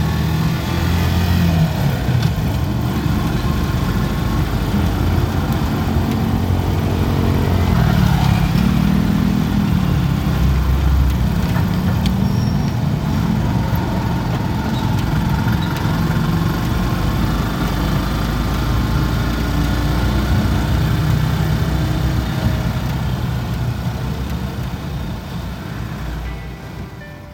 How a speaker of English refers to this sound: We're riding through the streets, weaving in and out of traffic, going past all sorts of stores that are selling Christmas decorations and food, people in flip-flops, and lots of motorcycles.